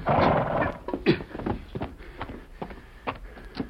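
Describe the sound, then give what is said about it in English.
A horse's hooves clip-clop in an uneven rhythm of hollow knocks, loudest at the start, then slow and thin out as the rider reins the horse up to a stop before a shack along the river. “Later that day, the man called Blackie reined up before a shack along the river, several miles east of the Lone Ranger's camp.”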